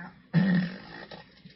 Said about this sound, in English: That sounds like my son farting. I'll let you hear it again, people. I mean, push the air out.